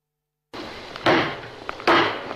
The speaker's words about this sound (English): And we'll hear them energetically chopping fish as they chat here.